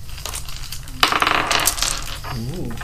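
Dice clatter and bounce across a table in a quick burst of bright clicks, followed by a brief murmuring voice.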